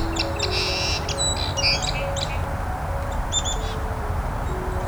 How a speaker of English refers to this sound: some kind of wren. There we go. This is on the other side of a creek. Not too far from an expressway here. The Carolina wren. Now, unfortunately, this isn't one of those signs of spring kind of calls, songs.